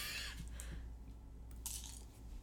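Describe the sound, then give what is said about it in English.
Crisp crunching of Reese's Pieces candy-coated peanut butter candies being chewed, with a few irregular crackly bursts over a low steady hum and no talking. “Now begins the chewing.”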